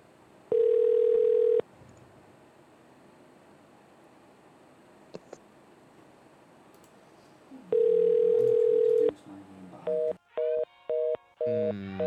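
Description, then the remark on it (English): A steady telephone dial tone sounds twice, each about a second long, followed by a quick series of touch-tone dialing beeps in a rhythmic burst, loud with no talking, as a call is placed from a studio phone. “Can someone call from the studio number? Can someone just use the studio phone?”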